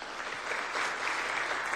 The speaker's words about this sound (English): Now, if you'll clap if you've watched any of the Olympics in the last week or so.